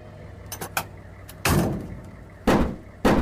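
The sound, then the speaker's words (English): Metal back doors of a box truck shutting after AIM-9 missiles were unloaded: a few light rattling clicks, then three heavy, loud slams with a brief rumbling decay, the last two coming in quick succession. No one speaks. “Okay, doors secure.”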